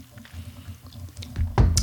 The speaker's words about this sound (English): Okay, so, wow, I'm really, this is my third water sip break. Of water Sorry, today. Ladies. Water break. Sorry, gentlemen.